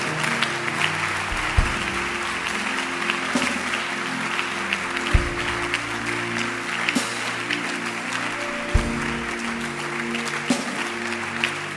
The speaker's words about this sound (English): Clap your hands, everybody. Everybody, video man, audio man, clap.